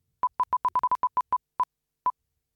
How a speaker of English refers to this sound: So without further ado, let's take the first spin of the wheel.